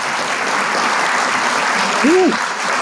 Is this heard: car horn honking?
no